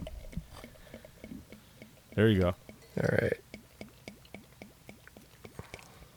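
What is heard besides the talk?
beer pouring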